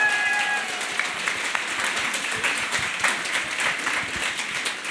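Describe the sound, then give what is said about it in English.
Sustained applause from an audience, many hands clapping in a dense, steady wash of crisp claps that holds at an even, fairly loud level throughout, with no talking. “a big round of applause.”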